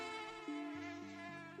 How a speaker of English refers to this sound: Then there were swarms of mosquitoes. She wrote that she was, quote, so stung, I looked like I was in the height of smallpox.